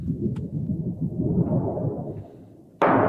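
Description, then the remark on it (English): A hanging thunder sheet, a piece of sheet metal used as a classic sound-effects device, shaken to produce a deep, rolling low rumble that swells and subsides, then a sudden loud crash near the end. “It's a piece of sheet metal, and you can get a wonderful low frequency rumble out of it.”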